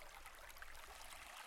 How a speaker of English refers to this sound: So the water you hear rushing in the background this whole episode is my actual river after these storms.